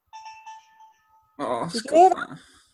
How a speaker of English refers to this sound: That was my DS.